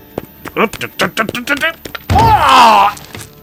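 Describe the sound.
A shoulder slams into a locked back-room door with a single heavy thunk, followed at once by a long, wavering groan of pain; a voice mutters in short bursts beforehand.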